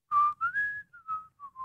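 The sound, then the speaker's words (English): A person whistles to mimic a football thrown slowly downfield by quarterback Brock: a clear tone rises briefly, then drifts slowly downward across several short, breathy bursts, with no talking over it. “All right, Brock's going to throw. There goes the ball downfield.”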